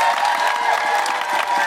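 An audience applauds and cheers, a dense, steady wash of many hands clapping with a few whoops mixed in, loud and continuous for the whole short stretch.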